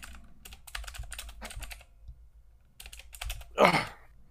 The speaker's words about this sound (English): I know everybody loves my clicky clacky keyboard.